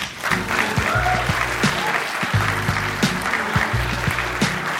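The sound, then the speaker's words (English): Steady applause from a stand-up comedy audience as comedian Baron Vaughn is welcomed to the stage, dense and continuous clapping at an even loudness throughout, with faint music or tones underneath and no clear voices. “Thank you for clapping, because none of you know who I am.”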